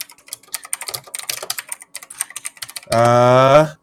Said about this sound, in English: Here, I can look it up real quick, actually. Here comes the clicky keyboard.